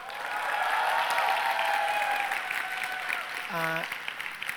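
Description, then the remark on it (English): An audience applauds steadily for several seconds for the speaker's sister's birthday, a dense wash of many hands clapping, with a brief harmonic tone or whistle cutting through near the end. “It is her birthday, so let's clap it up for her.”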